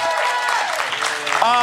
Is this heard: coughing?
no